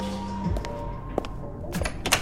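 Scattered keyboard clicks on a laptop, sharp and close, arriving in short bursts of two or three over a steady low room hum. No one speaks.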